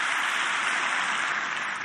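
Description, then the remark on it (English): A large audience claps steadily in response to a preacher, a dense, continuous wash of applause at even loudness throughout, with no individual voices standing out. “Clap your hands and shout if you believe I'm preaching the word of God right now.”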